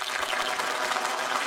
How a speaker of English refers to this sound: Golf clap? Golf clap. I got it. Golf clap? Where is it at? There's an applause button. There it is.